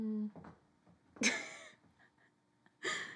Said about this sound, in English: As a tiny cat who's only capable of making 4 different noises, she's made 2 of them in the last 30 seconds.